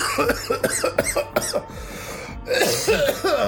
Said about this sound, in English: I'm really coughing.